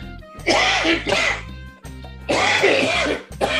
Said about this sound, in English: I love how you lean back, like as if we won't be able to hear the cough. Oh, pardon me.